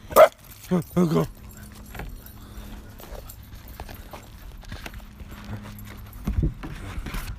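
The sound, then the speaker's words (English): A puppy at a house lets out three quick, high-pitched barks right at the start, then falls quiet under faint shuffling and background noise, with a brief louder rustle near the end. “Oh yeah, hey buddy. Little puppy Claw.”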